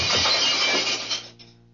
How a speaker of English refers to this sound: What are you going to do with that gun? Just use the butt of it to break the glass, ma'am. Now, please stand clear.